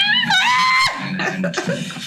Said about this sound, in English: Because it's in the beginning. I'll play a clip of it. The scream is right at the beginning. It wasn't planned. If it's planned. That's the scream.